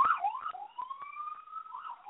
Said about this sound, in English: My apologies, everyone. My apologies for the, I'm obviously out in the streets. All these sirens going by, so my apologies.